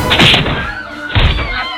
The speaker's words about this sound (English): Grabbing a prosthetic leg, I hefted it above my head like a morbid trophy and brought it down on its owner's head. The sickening thump fueled my righteous anger as I laid into my enemy anew.